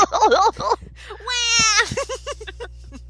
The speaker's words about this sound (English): So, where's a baby? Where's a baby on an airplane? Please, someone. I need a screaming baby on an airplane in a closed space. Anything to drown out this.